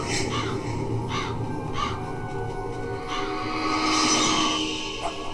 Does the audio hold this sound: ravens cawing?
yes